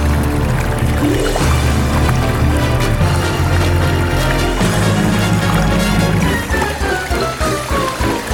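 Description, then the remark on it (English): A loud, steady actor spotlight theme music cue plays throughout, its sound smeared and gurgling through a water filter effect, with a wobbly muffled filter giving it a bubbly, submerged quality and no voices over it. “But, like, put, like, a shitty water filter over it.”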